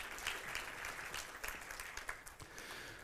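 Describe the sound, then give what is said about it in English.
An audience claps steadily for a woman, a dense wash of many hands holding a constant level throughout with no voices rising above it. “Let's give her a big hand clap.”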